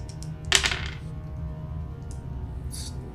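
A short burst of new dice clattering across a tabletop during a game roll, a quick cluster of hard clicks that fades within half a second, followed by a couple of faint taps over a low background hum.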